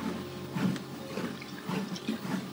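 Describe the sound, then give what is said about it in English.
Someone drinks water during a walk, after 4 kilometers, with a steady series of wet gulps and swallows every half second or so over a faint background hum. No one speaks. “Okay, and I get some water into me.”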